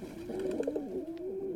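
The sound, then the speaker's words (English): A pigeon coos, a soft, low, rolling call that wavers and repeats in one continuous murmuring phrase, with no voices present. “From the pigeon's perspective, we humans live in the slow lane.”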